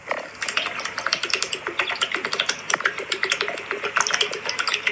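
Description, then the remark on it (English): A person chugs water in rapid, continuous gulps, a busy stream of wet gurgling and splashy clicks that runs steadily for several seconds with no talking. “Yeah, like it's me chugging water.”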